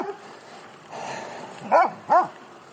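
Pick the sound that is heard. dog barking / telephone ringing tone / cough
dog barking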